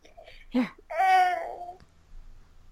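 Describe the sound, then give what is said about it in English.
A toddler whines once in a drawn-out, wavering moan lasting about a second, preceded by a brief vocal squeak, with quiet behind it. “Sorry, so I had to occupy the toddler.”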